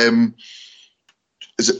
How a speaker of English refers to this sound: Pardon me. Hiccup something awful here, I apologize.